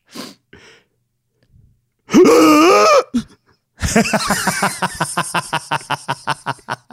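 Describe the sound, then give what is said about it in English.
A person gasps: a short, sharp voiced intake of breath, a pause, then a longer, strained gasp that breaks into rapid, shuddering breathy pulses, fairly loud with no talking. “This is pure gasp.”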